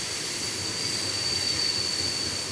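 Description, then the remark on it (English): A train rolls steadily along railroad tracks by a town, a continuous rumbling roar with a thin, high metallic wheel squeal ringing over it, sustained throughout, with no voices. “Trains frequently pass on the railroad tracks above and below the town.”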